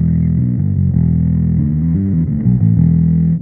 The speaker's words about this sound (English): So yeah, that, and then I have the Big Muff obviously for a lot of moments just to get the crunch in there.